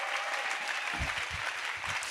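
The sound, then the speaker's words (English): A crowd claps in a steady round of applause, dense and sustained for a couple of seconds, with a few louder low thumps mixed into the clapping. “They do such an amazing job every week, so can we give them a quick round of applause before we get started?”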